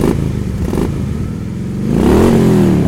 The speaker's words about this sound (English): Every time I swear, or Jesse swears, please add the sound effect of a Harley revving.